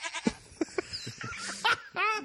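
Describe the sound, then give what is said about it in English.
Someone imitates a bleating goat: a few short, nasal bleats followed by a louder, longer wavering bleat at the end. “We could have a zombie goat.”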